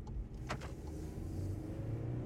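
small car engine revving

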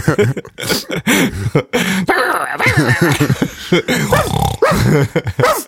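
dog growling and barking

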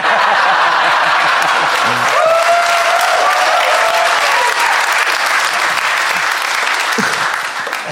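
audience applause

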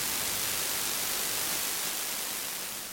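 burst of radio static

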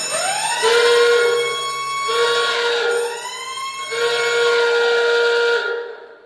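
alarm sound effect

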